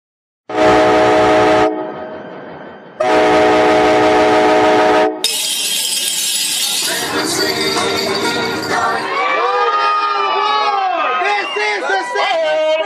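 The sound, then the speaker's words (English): Two long, loud train horn blasts ring out, then the rumble and metallic screech of a Santa Express holiday train rolling by in the Nevada Southern Railway rail yard in Boulder City, with indistinct voices chattering over the noise toward the end. “So you're in Santa's rail yard right now, and after they got a brief train ride of about 20 minutes”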